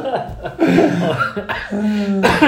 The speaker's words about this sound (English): Sorry, that's not a COVID cough, by the way, listener. No. It's just a cough.